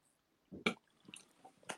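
A wet spitting sound into a bottle: a soft low squish followed by a sharp splattering burst, then smaller liquid drips and a final short spit, with no talking.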